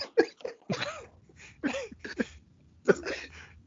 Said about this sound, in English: Gentlemen, it's a pleasure. Did you just cough in the middle of the introduction?